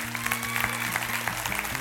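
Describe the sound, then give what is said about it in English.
A roomful of people at a church service giving Jesus a hand clap, a dense, steady patter of many hands clapping at once that holds at an even level throughout without a clear voice rising above it. “Give Jesus a hand clap.”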